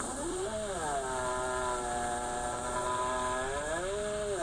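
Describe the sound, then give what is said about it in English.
A bear trapped in a cage gives a long, droning moan, steady, with a rough, engine-like buzz whose pitch dips low and climbs back up over several seconds, heard alone without any talking. “That noise, though, is actually really super sad because that's a bear trapped in a cage.”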